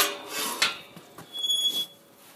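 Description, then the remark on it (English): A few faint, irregular knocks and clanks of a horse bashing on a wooden stable door on a farm, with a thin high squeak near the end and no talking. “Yep, that's the horse bashing on the door to ask if they can go out into the field, I'm guessing.”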